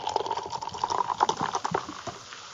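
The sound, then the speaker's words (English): A tropical-smelling drink with a kiwi and candied lime scent is poured into a glass, with a steady splashing, gurgling stream that rises slightly in pitch as the glass fills. The pour is fairly quiet, and no one speaks. “I'm actually going to pour it in the glass.”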